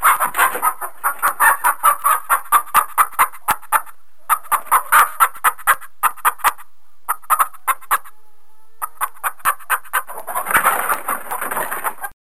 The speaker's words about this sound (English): Okay, well, this is a chicken coop, so maybe this is.